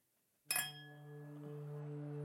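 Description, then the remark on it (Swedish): Two bottles, one of them a wine bottle, clink together once in a toast, a sharp knock followed by a clear, ringing tone that hums on steadily for a couple of seconds. No voices are heard. “Skål. Klirr, klirr. Oj, vilket dåligt klirr. Kan du få till bättre klirr?”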